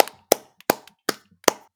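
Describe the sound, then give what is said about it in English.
A handful of sharp hand claps, about five, evenly paced in a steady rhythm, fairly loud, with no voices in between. “So round of applause for them.”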